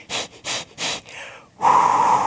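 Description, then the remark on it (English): Someone demonstrates patterned labor breathing: three quick, sharp breaths in a steady rhythm, a softer trailing exhale, then a loud, drawn-out blowing breath with a hum of voice. “I mean, I've been to the breathing classes.”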